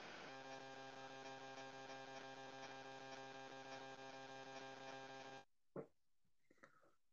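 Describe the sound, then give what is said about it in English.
A loud, steady electrical buzz drones on a phone line for about five seconds, then cuts out abruptly, leaving faint crackles and a brief blip. “What is that? Static.”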